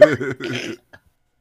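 A person lets out a quick run of three rough, throaty coughs in under a second, strained and voiced, followed by a faint small sound and silence.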